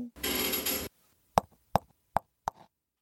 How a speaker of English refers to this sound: Hey, your phone.